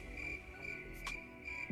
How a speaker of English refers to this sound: In silence. Crickets.